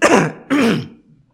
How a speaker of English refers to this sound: I guess God, let me just do one big cough and get it all out of the way.